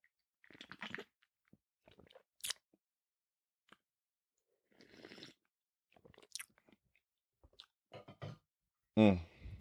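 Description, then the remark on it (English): Mouth noises of someone sipping coffee: scattered wet slurps, lip smacks and small clicks separated by quiet pauses, ending with a louder gulp or exhale. “So let me get a sip of coffee first because I feel like I'll just love an ASMR moment.”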